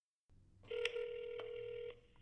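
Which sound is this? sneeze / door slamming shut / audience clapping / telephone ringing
telephone ringing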